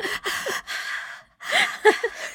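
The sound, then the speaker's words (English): A voice imitates heavy, breathless gasping: a run of loud, ragged breaths drawn in and pushed out in quick succession, then a brief pause before a few strained, voiced huffs. “But it just makes it sound like you're gasping for your life.”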